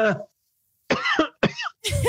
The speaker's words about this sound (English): Hey, you're making his COVID act up. Hold on. Stop. Stop coughing.